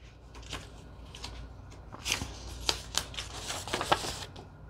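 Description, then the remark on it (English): Pages of a vintage junk journal being flipped, with soft rustling and a handful of crisp, irregular page turns that grow busier toward the end, with no one speaking. “Vintage Junk Journal Flip Through!!”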